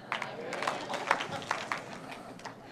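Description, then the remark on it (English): A group claps in response to the line "If you're happy and you know it," a loose, uneven patter of sharp, overlapping claps at moderate volume with some faint voices mixed underneath. “do you know why you're clapping?”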